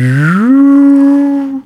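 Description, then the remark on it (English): A voice imitates an electric car driving by: a loud hummed tone slides upward in pitch, then holds a steady whine for about a second before cutting off abruptly. “Dude, have you heard like when an electric car drives by? It's like... It's like about to blow up.”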